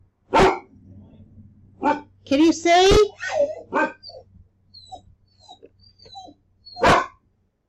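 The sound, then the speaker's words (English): A dog barks sharply a few times, loud, with single yaps spaced seconds apart while a person talks briefly in between. “What is he barking at?”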